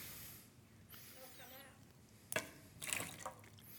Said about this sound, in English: If I take this bottle of water and I put this little Christmas ball on top of it and I turn it over, will the water come out or will the water stay in?